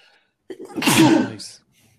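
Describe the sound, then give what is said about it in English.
A single loud sneeze: a quick sharp inhale building into a forceful burst, then a brief breathy tail fading into quiet. “And I'm going to sneeze.”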